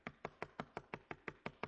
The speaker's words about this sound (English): It's going to come to your front door. There's going to be a knock at midnight.